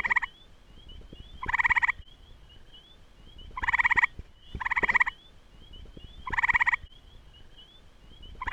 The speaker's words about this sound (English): The gray tree frog.